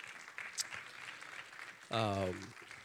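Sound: audience hand clapping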